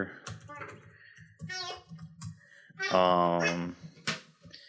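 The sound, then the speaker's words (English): Scattered clicks of typing on a computer keyboard, a few sharp taps spaced irregularly, mixed with a person murmuring and vocalizing over them while typing a search for the meaning of AD. “Sorry, folks, I'm sitting typing AD time meaning.”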